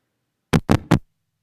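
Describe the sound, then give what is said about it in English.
Three firm knocks on a door in a quick, even rhythm, fairly loud, followed by silence. “It's like somebody was knocking on the door.”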